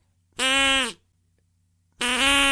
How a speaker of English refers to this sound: It's a duck call.